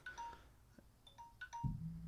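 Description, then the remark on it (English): A phone's ringtone: a quick run of short, bright electronic beeps in a simple melodic pattern, with a dull low thump near the end and no talking. “Shut up, phone.”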